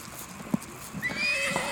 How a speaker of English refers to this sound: Stupid, beautiful, idiot horses. God, you all smell amazing.